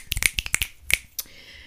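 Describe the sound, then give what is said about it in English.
A quick, uneven flurry of sharp finger snaps, roughly ten crisp bright clicks packed closely together, then a short pause and one final snap. No one speaks. “To snap, crackle, and get this podcast popping.”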